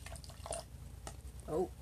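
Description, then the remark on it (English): Wine pours into a glass with a soft, steady trickle and light dripping, fairly quiet, while a voice briefly murmurs near the end. “I don't know how much to pour.”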